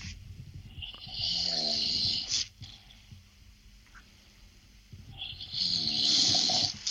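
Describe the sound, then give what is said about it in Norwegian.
A man snoring, two loud rattling inhales a few seconds apart with quieter breathing between them, with no talking. “Det høres ut som et dyr som snorker.”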